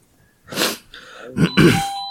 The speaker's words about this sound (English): I'm going to go get that doorbell. Have fun without me.